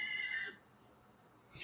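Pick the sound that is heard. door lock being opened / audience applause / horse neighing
horse neighing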